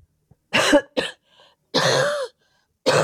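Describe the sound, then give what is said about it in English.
Four harsh coughs break out in separate bursts, a short pair followed by a longer rasping one and a final hack, with brief silences between and no talking. “probably good that no one is exposed to this coughing”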